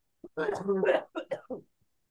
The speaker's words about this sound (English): Smoker cough. Cigarette cough. Although I don't smoke cigarettes.